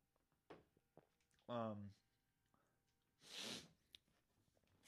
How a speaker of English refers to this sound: I'm going to take another sip of my smoothie.